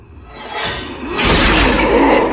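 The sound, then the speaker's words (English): A loud, heavy boom strikes against glass, with a first surge of noise followed by a bigger, sustained crash of rumbling, rattling sound. No one speaks. “They wait for you to stick your face right up against the glass. And then they give you a big fat boom.”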